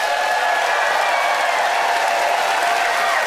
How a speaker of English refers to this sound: Well, audience, it's up to you to pick a winner by applause.